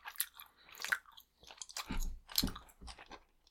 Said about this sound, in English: Why are you eating grapes? We're supposed to be chewing gum.